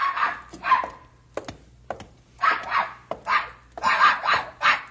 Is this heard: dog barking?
yes